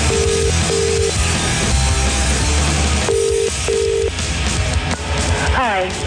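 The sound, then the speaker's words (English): A telephone line sounds its tones as a prank phone call is placed: two paired beeps, a pause, then two more, over a steady bed of background sound, with a brief warbling tone near the end. “Before the programme, I made yet more of my now classic wind-up phone calls.”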